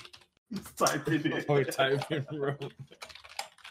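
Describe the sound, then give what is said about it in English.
Rapid clicking of computer keyboard keys close to the microphone, partly under a muffled voice, then continuing as a burst of sharp keystrokes on their own. “Can you move your mic away from the fucking keyboard, bro? It's next to my fucking keyboard, bro.”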